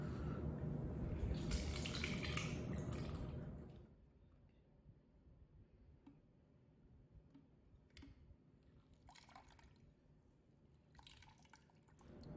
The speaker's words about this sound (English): So I've just cut all of my lemons in half, and now I'm going to simply squeeze the juice right into my pitcher.